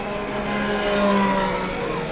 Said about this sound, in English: We've just had another parade lap. So that you can hear it, I'll wait till they all get by. The cars, when they come by here, on these parade laps are warming their tires up, so they go back and forth up and down the track.